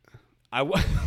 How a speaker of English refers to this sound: what was that? It's just burping on the mic. That's all I'm doing.